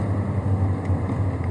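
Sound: engine running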